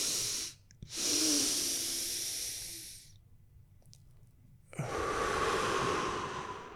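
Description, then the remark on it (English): Audible breathing performing a physiological sigh: a short sharp inhale, a second longer inhale right after, a brief held pause, then a long, steady, airy exhale, with no talking. “But back to what we're talking about, the physiological sigh, two breaths in.”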